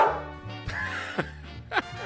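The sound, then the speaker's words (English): A recorded dog bark sound effect, triggered with a bark button in a radio studio in Vancouver, plays as a few short, sharp yelps spaced unevenly over about two seconds, moderately loud, with a low hum running underneath. “as his mouth opened, Laddie hit the bark button”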